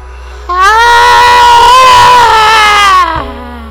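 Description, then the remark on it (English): A sustained, loud scream on the out-breath during a scream-breathing exercise, lasting about two and a half seconds, strongly harmonic and steady in pitch, rising suddenly and cutting off abruptly, with no speech over it. “I want you to breathe in through your mouth. And as you breathe out, I want you to scream.”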